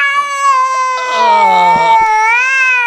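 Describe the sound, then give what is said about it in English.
A cat lets out one long, loud, wailing meow that rises and falls like a crying baby, sustained for nearly three seconds with a strained, quavering tone, alone. “That sounds like a baby. It does. It's not a baby. Amazing. It's a cat. Yeah, that's a cat.”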